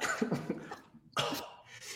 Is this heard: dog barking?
no